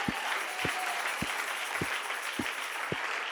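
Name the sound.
audience clapping hands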